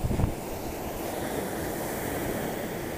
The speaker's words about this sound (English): And I'm right at the edge of the beach, and the water's coming up to my toes.